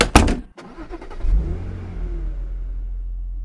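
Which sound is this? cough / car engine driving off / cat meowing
car engine driving off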